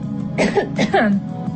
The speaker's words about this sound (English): Hold on, I have to cough again.